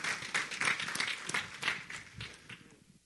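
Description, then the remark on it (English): An audience applauds together, a dense burst of many hands clapping that stays steady for a few seconds before quickly tapering off. “So let's give them a big round of applause.”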